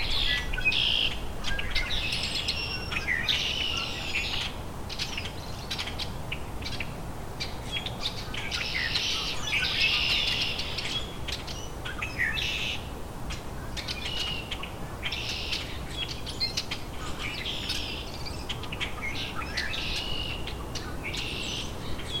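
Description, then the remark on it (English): A single rusty blackbird calls with repeated squeaky, creaking notes, mixed into a busy chorus of other chirping birds over a steady outdoor hiss, with no voices. “There's a rusty blackbird.”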